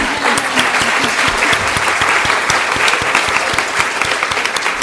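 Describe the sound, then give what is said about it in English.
An audience claps steadily for several seconds, a dense, even patter of many hands with sharp individual claps scattered throughout, loud and sustained without any talking. “So you can clap if you want.”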